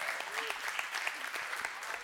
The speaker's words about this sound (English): Yeah, that's a good time to clap.